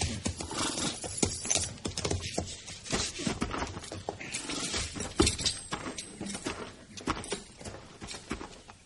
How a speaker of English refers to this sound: Let's leave the horses here.